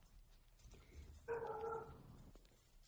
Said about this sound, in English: And those dogs. That's me. I'll mute it.